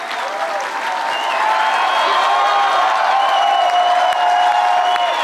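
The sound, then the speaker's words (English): Sustained crowd applause during a speech, thanking the speaker's mother and father, a dense wash of many hands clapping at steady loudness for several seconds, with faint cheers and whoops mixed in and no speech over it. “Now, you hear that applause there, and not to get too technical, but, you know, I as a radio reporter, I have some, you know, audio software that we use to edit things down, and just taking a look at the unedited, unchanged audio of this speech”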